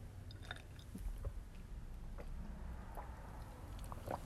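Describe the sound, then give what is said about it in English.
Someone takes a drink of water, with soft wet mouth sounds and a few quiet gulps and swallows scattered over several seconds. No one speaks. “Let me just take a drink of water.”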